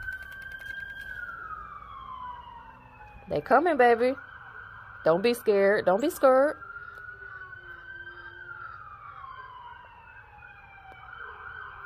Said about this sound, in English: You hear the sirens? Here come Archangel Michael.